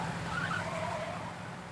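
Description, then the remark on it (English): Two cars race each other along roads, tires skidding and squealing, high-pitched screeches riding over a steady engine roar for under two seconds, fairly loud with no voices. “Then the two mothers raced each other along the roads back home.”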